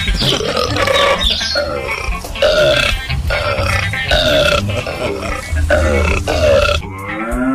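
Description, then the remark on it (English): A long string of loud, gurgling burps rolls on almost continuously, each belch low and croaky with pulsing rises, broken only by brief pauses before a final higher, raspy burp. “would call it, and then it produces their burps into water.”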